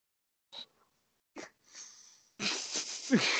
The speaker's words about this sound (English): I just blew up a balloon here. Hang on. Fart noise.